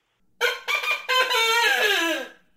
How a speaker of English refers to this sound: You would have barnyard animals like a rooster.